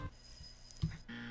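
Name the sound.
game show buzzer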